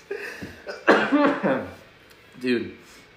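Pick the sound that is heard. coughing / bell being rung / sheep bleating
coughing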